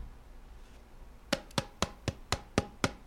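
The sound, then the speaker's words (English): Eight quick, sharp taps on a thick plastic Frockwood water bottle, AIBA approved, struck in a steady, even rhythm after a moment of quiet. Each hit is a dry, hard knock with no talking over it. “This is like super thick-ass plastic.”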